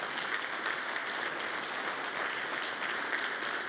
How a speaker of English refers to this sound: Let's give the kids another round of applause.